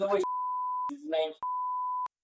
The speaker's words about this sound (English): What I'm going to do is just put a beep over that and leave it to people's imaginations.